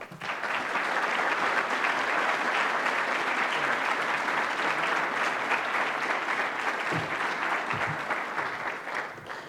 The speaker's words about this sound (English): So I would ask you, with your applause, to please welcome the Secretary General of NATO, His Excellency Herr Stoltenberg.